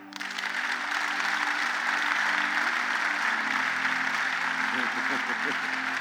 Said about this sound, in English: Clap.